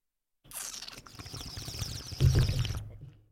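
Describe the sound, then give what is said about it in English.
Wet slurping sips of water followed by a few gulping swallows, with gurgly low-pitched sounds that swell louder toward the end before fading out. “Did you guys hear that? I drank water.”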